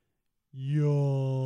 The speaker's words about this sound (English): Yawn.